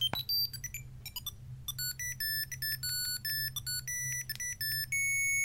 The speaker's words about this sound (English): Single channel beeps, isn't it? Nothing like it. Because on Dig Dug, when you move, the music plays, a little tune plays. As you move, when you stop, it stops.